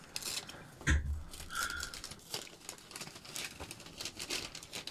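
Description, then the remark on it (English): Crinkling and tearing of gift wrapping paper as a present is opened, with a sharp rip near the start followed by steady rustling and crumpling as the wrapping is pulled apart. “I was trying to like not fuck the paper up, but oh well.”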